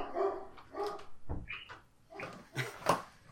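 Dogs bark in a quick, irregular series of sharp woofs, moderately loud, with no one talking over them.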